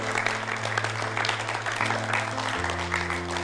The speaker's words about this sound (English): Yeah, glory to God. Just clap for him already. Just clap. Amen.